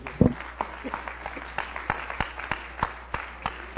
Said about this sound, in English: Isn't that great? Give Him a hand clap.